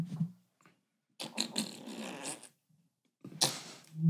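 A short, low fart at the start, then a longer sputtering, raspy one, and a final burst at the end, made by someone playing VR archery. All are fairly loud, and there is no talking.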